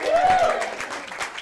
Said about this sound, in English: So, ladies and gentlemen, please give a round of applause to our cast for Left Handed Radio and Matt and Brett Love Comics presents Spider-Man 4.